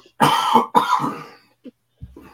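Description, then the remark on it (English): Two loud, harsh coughs in quick succession, each a broad raspy burst, followed by a short faint catch and a small trailing noise as the coughing fit, caused by water going down the wrong pipe, settles. “She talked about being in a bucket and the water went down the wrong air pipe because I pictured myself up there picking bears and falling on the ground.”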